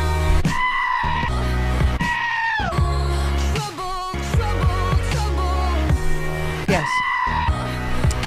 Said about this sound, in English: And that's sort of the goats.